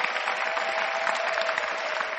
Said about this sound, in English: And I think I also want us to put our hands together for our Father Bishop God. You know?